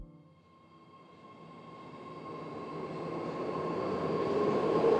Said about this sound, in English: It's a warm evening, and I'm hanging out at the BART train station in San Jose.